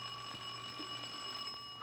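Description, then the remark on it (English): A bell rings continuously with a steady, shrill, metallic tone, holding at an even loudness for about two seconds with no talking. “Saved by the bell.”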